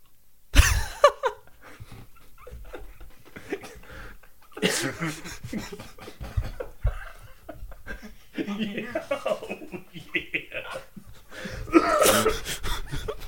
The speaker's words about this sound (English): Get a little cough at the end. You gotta cough after everything.